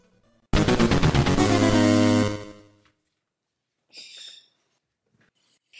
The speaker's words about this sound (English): Too much bird in the background. Sorry about that. Bird gets excited when people start to come downstairs.